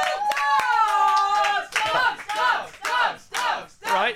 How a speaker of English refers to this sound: Can we just hear it for dogs, please? You know. Control round of applause for all dogs.